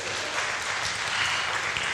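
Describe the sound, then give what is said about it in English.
A crowd applauds steadily, a dense wash of many hands clapping at once with no breaks, sustained throughout. “Can we have some round of applause or something?”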